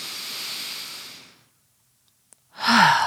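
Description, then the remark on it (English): A person takes a deep conscious breath: a long, airy breath drawn in, a brief pause of silence, then a louder exhale that trails into a soft voiced sigh. “I would like to take a conscious breath.”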